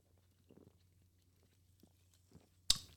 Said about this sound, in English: Hold on, I'll take a sip of this. Hold on.